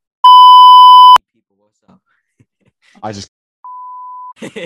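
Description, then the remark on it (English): A loud, steady one-second censor bleep cuts off speech, followed by a brief spoken fragment, then a second, softer bleep interrupting the talk again before a voice resumes. “I like beep you out or like add some like fancy elevator because you just said something that you just like this is recorded.”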